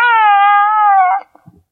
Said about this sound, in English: That first noise didn't sound like a baby. No, it didn't. It didn't. Sound like a rug boy fart. It's a baby Yoda that makes little cooing sounds and has music.